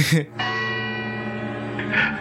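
A single deep, resonant chime of a neighboring clock rings out and hangs in the air, its tone slowly sustaining, preceded by a brief noisy burst.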